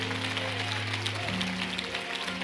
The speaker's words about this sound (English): Come on, give God a big clap offering of praise.